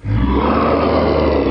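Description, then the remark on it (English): A deep, terrifying roar of a legendary Missouri River water monster, buffalo-like with one eye, a single horn and spines on its back, bursts in loud, holding steady as one rough, growling blast for over a second with no voices around it. “Its appearance is accompanied by a terrifying roar.”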